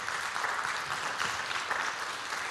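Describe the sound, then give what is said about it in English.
An audience applauds the Lord in a steady, dense wash of clapping lasting a couple of seconds, with no voices standing out above it. “Come on, if you receive that, would you give the Lord a great round of applause?”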